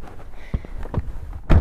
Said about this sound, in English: So I'm going to try to like cover you, or at least edit this sound out. I'm going to close the door. It's going to be very loud.